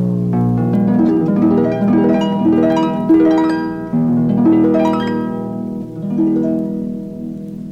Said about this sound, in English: The sound of a harp.